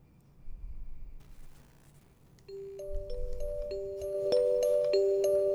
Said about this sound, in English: What's more comforting than the sound of little bells, vibraphones... and the beautiful melodies of Beethoven.